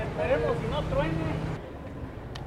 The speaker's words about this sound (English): You can hear the traffic, just so much traffic coming into the city.